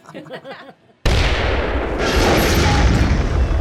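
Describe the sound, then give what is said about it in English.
A voice shouts briefly, then a sudden, loud wall of battle noise erupts: dense, crackling gunfire mixed with deep booming explosions that roar on without pause. “Maintain suppressive fire!”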